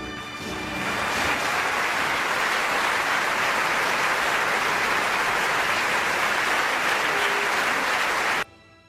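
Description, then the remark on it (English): An applause sound effect for a commencement address: a burst of crowd applause swells within the first second into dense, steady clapping that holds at full strength, then cuts off abruptly near the end. “With the sound effects, please.”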